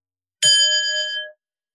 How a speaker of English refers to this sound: I'm going to ring a bell, but I'd like you to rest in the state as much as you can.